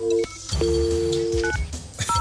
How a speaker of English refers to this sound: Right then. Do you want to dial that number then, lads? There we go.